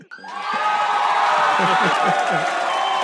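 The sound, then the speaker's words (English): A clapping sound effect played in a livestream: a crowd bursts into loud, steady applause with cheering and whoops mixed in, the dense clapping starting abruptly and holding at full strength for about three seconds. “All right, we got some claps in here from Don DeLacy.”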